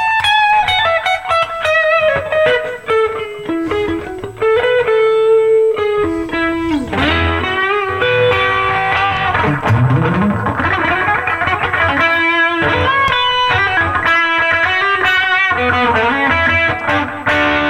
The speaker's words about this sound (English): That's the mark of a good pedal, the good distortion right there, when you can go. And the notes are completely clear. They don't grind against each other.